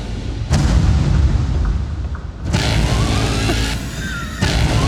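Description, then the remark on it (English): Heavy cinematic booms, roughly four big hits at uneven intervals over a continuous deep rumble, loud and close like movie trailer sound effects, with no voices. “When did music start becoming blongs? Like, trailers are all just odd sounds that aren't really things.”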